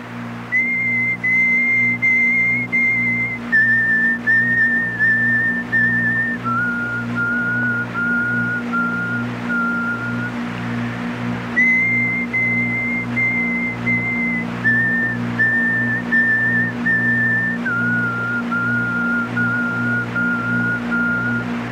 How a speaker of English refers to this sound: whistle of a spirit. It's supposed to bring the spirit down from the mountains